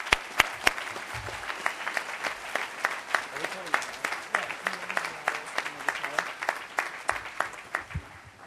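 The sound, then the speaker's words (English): An audience at a Princeton University ceremony claps steadily for several seconds for the Spirit of Princeton Award student recipients, a dense, bright patter of many hands with sharper individual claps popping out, holding at an even level throughout. “The Spirit of Princeton Award recognizes a distinguished group of students who have made positive contributions to various facets of university life, and I hope you'll join me now in giving them all a warm round of applause.”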